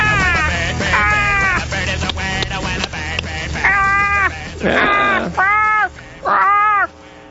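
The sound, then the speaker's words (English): A voice on the show Gender Talk imitates a raven cawing, giving a run of loud, harsh arched caws in quick succession, with short gaps between the later calls and no talking. “But now it's time for that feathered friend...”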